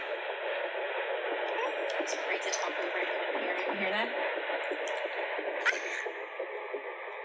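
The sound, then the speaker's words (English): A fetal heartbeat on an ultrasound monitor comes through as a steady, muffled whooshing static, continuous and fairly loud throughout, with faint murmurs in the background. “That's a beautiful heartbeat.”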